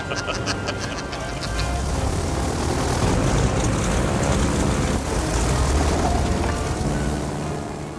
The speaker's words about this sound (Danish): Flyet letter fra Shanghai, og så får vi selvfølgelig vores allerede klassiske Indiana Jones rejsemontage, travelog-sekvensen, hvor vi ser et landkort superimposed ovenpå billedet af flyet, der rejser hen over forskellige geografi her, bjergene.